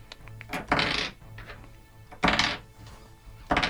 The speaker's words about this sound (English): I gotta roll like 18 freaking dice over here. Such a hard knife. Hopefully they're all ones.